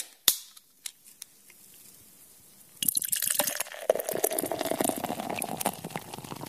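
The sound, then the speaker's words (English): A sharp crack as a drink container is opened, a few softer clicks, then a steady fizzing, bubbling pour that carries on until the end, with no talking; the drink is sake. “No, dude, we're going to crack open a few cold ones.”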